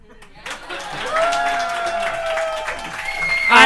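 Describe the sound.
A burst of audience applause starts abruptly and holds steady as a dense, crackling wash of clapping, with voices mixed in and cheering or whooping that rises toward the end.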